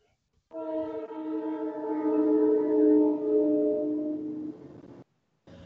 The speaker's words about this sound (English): Here's the train. You have a train at your house. How cool is that? Well, you know, the funny thing is, I love this train. So... I'll let it go by.